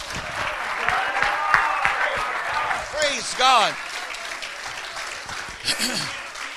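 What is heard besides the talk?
audience clapping hands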